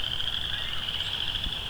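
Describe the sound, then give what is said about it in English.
A dense chorus of western chorus frogs, many overlapping trilling calls forming a continuous high-pitched buzz over about a square kilometer of marsh, with steady low rumble underneath and no voices. “A lot of chorus frogs. Probably western chorus frogs.”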